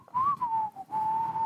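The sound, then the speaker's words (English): Two people whistle a simple tune together over a Skype call, one coming in half a beat behind the other, with long held notes and gentle pitch slides, broken by a few short breaths, over a faint low background hum. “And due to our Skype lag, you're coming in, you know, half a beat behind me, and that's always fun to have to whistle along to.”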